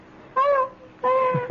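A cat meows twice, two fairly loud, drawn-out tonal cries separated by a short pause, the second slightly longer and trailing off. No one speaks.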